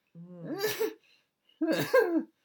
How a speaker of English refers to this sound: Sorry, slight cough.